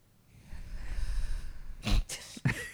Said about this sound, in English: My deep breathing is going to soothe you to sleep. Okay, on the count of three, we're all going to breathe into the mic.